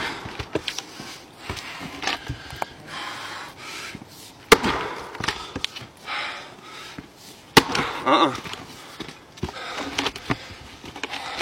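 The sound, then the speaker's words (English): Wood being chopped while a man makes sexual noises: loud, sharp cracking thuds land at an irregular pace, with breathy vocal noises and rustling filling the gaps between strikes. “who is best known for his extremely horny videos featuring himself making sexual noises while chopping wood.”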